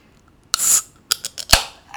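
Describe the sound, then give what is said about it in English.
A can of UFO Light Force beer being cracked open: a sharp snap and short fizzing hiss, followed by a few quick metallic clicks and a louder pop, with no one talking. “So I'm gonna crack this open.”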